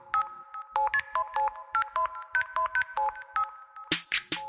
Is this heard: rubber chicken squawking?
no